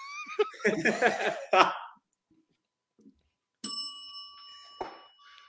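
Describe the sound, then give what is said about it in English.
A small bell is struck once, giving a bright ring that sustains and slowly fades, following a burst of laughing voices and a brief pause. “I have a bell. I just ring it.”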